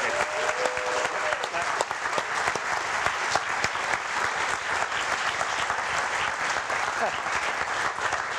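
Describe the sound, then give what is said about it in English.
A crowd breaks into loud, sustained applause welcoming an investor guest, dense rapid clapping holding steady for about eight seconds with scattered cheers mixed in. “I think he deserves a hell of a lot more than a golf clap.”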